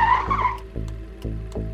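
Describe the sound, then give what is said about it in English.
A car's tires squeal sharply for about half a second and die away, leaving a heavy engine rumble with a few dull, evenly spaced thumps. “I purposely lose control of the car. I go over a couple of garbage pails. I go toward a fence, stop, screech.”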